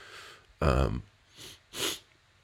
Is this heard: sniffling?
yes